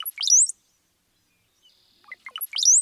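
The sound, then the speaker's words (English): A brown-headed cowbird gives its song twice, each a burst of low gurgling notes rising into a thin, high whistle, separated by a brief pause of near silence. “Brown-headed cowbirds have a sneaky approach to parenthood.”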